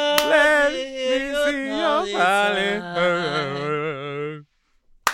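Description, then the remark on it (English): A sustained sung melody with a sharp hand clap at its start, then a pause of silence before one more lone, crisp clap at the end. “I messed up that last one, that last clap.”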